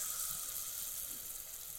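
Cauliflower laid into oil heated to the right temperature sizzles, a steady, dense hiss with fine crackling spread across the high end, holding even in loudness for the whole short stretch with no voices.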